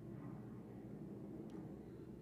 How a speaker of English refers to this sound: I'm gonna say what I say, and then I'm gonna mute myself until the plane goes away.